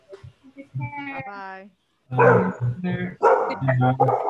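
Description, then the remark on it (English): A dog barks repeatedly, a few short rising yelps followed by a run of louder, rough barks in quick succession. “Oh, bye, dog. I like that dog.”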